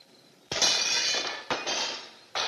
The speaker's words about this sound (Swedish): Och det finns ju den här scenen just när de ska ta ner månen, där de ska krossa fönster i ett hus. What, you gonna throw a rock?